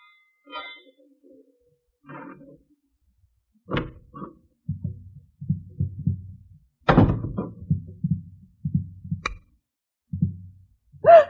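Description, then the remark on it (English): A key scrapes and clicks in a door lock at about midnight, followed by a series of dull thunks and rattles as the latch works and the door moves. “The sound of a key in the lock of the door.”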